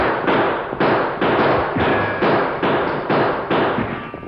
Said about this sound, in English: Clarabelle and Thunder shoot at them, too.